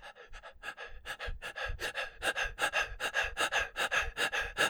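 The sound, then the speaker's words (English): A voice imitates heavy, labored panting, the hard breathing of a night with COVID, with rapid rhythmic breaths in and out that grow louder and steadier over about five seconds, alone without any talking. “I call it the night of the hard breathing.”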